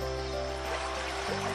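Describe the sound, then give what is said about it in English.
Steady flowing river water, a continuous rushing and babbling wash with no breaks, joined by a faint low hum underneath. “Maria goes forward and takes a dip in the river.”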